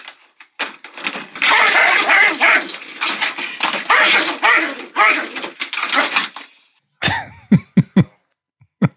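A dog barks and yelps frantically, muffled, inside a cage covered with a blanket, with rattling and clattering noises while someone slides the cage back with a foot, followed by a few short, sharp barks near the end.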